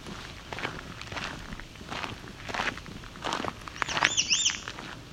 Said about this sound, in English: Oh, there we go. So, of course, it's an American red start. Another variant on its call. American red starts, a lot of variation.